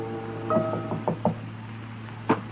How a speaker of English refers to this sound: He hesitates for a moment. Behind that door is a young wife, now a widow. He knocks quietly and the door is opened.